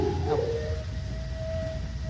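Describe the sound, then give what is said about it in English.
Long, drawn-out wolf howls in a film, steady mid-pitched wails that waver and glide slightly, sounding over a low background rumble with no talking. “That's one of your fake animals, James.”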